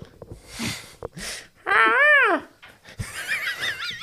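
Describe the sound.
A person screeches in imitation of an eagle's cry: one loud, strained call that rises and falls, then a higher, warbling shriek, after a few breathy huffs.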